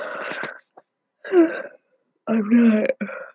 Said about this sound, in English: That's a yawn.